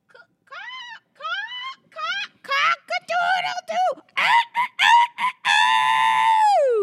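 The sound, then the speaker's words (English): A person imitates a rooster crowing: a run of short, rising, strained vocal whoops builds into one long, loud, drawn-out crow that drops off at the end. “My cat can't stand it with a cock-a-doodle do, and it's part of who I am.”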